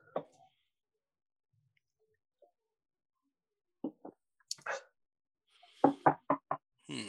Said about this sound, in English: That was me knocking on the wall so that Jenna will come in and try the mango Mai Tai.